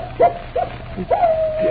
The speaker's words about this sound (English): Captain Drummond, that howl is... It's the wolf dog. Moran's dog.